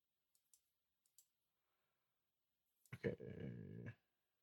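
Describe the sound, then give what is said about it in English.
Four soft, quick keyboard clicks tap out in two pairs as a password is typed, followed after a pause by a loud, brief tonal sound lasting about a second. “I might have been typing password in wrong.”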